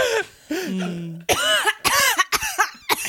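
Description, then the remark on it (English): A person lets out a strained, groaning vocal sound, then a run of about four harsh, raspy coughs in quick succession, loud and deliberately acted out. “Realistic coughing.”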